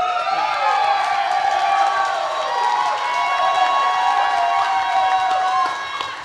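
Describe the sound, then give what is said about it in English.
A live audience cheers and claps steadily for about six seconds, a dense wash of applause with overlapping high-pitched whoops and shouts, loud throughout and tapering slightly at the end. “We have clap all for him again.”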